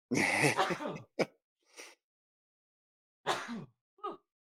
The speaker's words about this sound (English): But on Saturday, he had these weird comments like, I'm about to sneeze, so hold on.